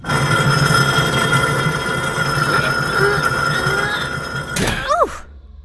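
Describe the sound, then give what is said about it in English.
A steady droning hum fills the background, then near the end a door gives a short creaking groan and shuts with a solid thunk, leaving sudden quiet. “Now, let's see if this door will close.”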